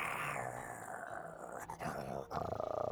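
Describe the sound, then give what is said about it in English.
A dog growls low and steadily for about three seconds, the rumble turning into a choppier, pulsing snarl near the end. No one speaks. “Your dog, he is pointing and growling at the dragon.”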